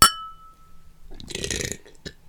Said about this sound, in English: Weird ass throat noise. Yeah, throat. You mean butthole. Like, was that my butt? It was my throat.